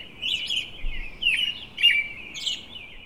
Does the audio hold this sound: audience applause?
no